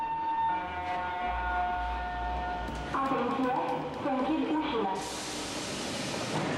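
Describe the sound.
A metro train pulls away from a station with a low rumble and sustained tonal whine, followed by a burst of broad hissing noise as it departs; voices murmur faintly underneath.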